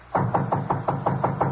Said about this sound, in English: Frank and I went up to the fourth floor and knocked at the door.